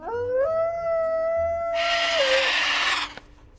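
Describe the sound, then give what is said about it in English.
A single long dog howl, loud, rising at first and then holding a steady wavering pitch, with a rough, breathy hiss joining in during its second half before it trails off. “Oh, I can bark. And here's howling.”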